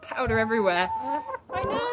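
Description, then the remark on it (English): A hen clucks and grumbles in wavering, nasal bursts while a woman, looking behind the hen's wings and dusting her with mite dust, speaks briefly over her, the bird's calls fairly loud and continuous before a short pause and another burst. “I'm just looking in behind her wings.”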